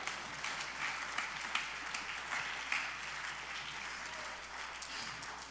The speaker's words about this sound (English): Somebody say amen. Clap your hands all over.